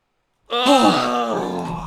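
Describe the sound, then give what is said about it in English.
A person imitates a snore with a single drawn-out, groaning vocal rumble that starts after a moment of silence. It is loud and continuous, with no talking around it. “And then you hear him begin to snore.”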